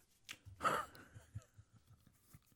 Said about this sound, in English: So, yeah, I'm going to take a sip. Got a little passion fruit bubbly here.